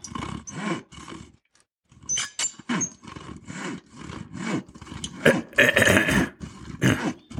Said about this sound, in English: In this moment, it was the sawing of a log.